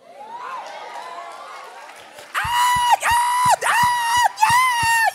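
A crowd cheers at first, then loud, shrill screams burst out in repeated waves, each one rising, holding and cutting off sharply, with a rhythmic thumping underneath.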